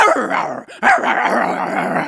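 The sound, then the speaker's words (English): A dog barks and yaps loudly in a rapid, agitated burst, pausing briefly before carrying on without a break. No one speaks. “he opened his bag of trouble. And out jumped the shopkeeper's dog.”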